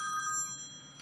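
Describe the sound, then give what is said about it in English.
A mobile phone rings with a bright electronic tone, steady sustained pitches, moderately loud, with no one talking over it in this brief moment. “Shall I put my phone on silent?”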